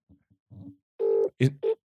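Phone tones play over a speakerphone as an outgoing call is placed: faint low murmurs first, then a sustained electronic tone followed by two short, sharp beeps, moderately loud.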